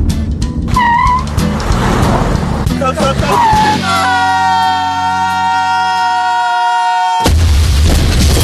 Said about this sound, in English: Took the shortcut, huh? Have a car wreck?